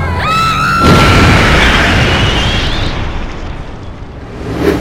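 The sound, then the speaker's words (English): A brief rising whine cuts into a sudden, loud explosion of the Nemtex building, followed by a heavy roaring rumble as the building collapses, slowly fading over several seconds, with no voices. “It appears the Nemtex building has exploded and is now collapsing!”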